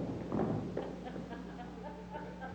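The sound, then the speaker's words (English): An audience stomps their feet in response to a call to stomp if they are saved: a brief burst of dull, overlapping thuds near the start, then it fades into quieter murmuring voices over a steady low hum. “If you're saved and you know it, stomp your feet.”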